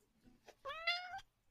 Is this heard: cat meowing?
yes